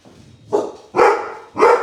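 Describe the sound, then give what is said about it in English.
A dog barks three times in quick succession, loud, each bark sharp and harmonic with brief pauses between them. “Colby's favorite place to just sit and bark.”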